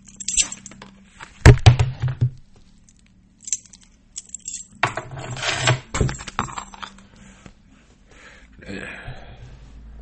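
Metal dog tags jingle and clink as they're pulled off, with rustling fabric and a sharp clatter early on, followed by scattered softer rattles and shuffling.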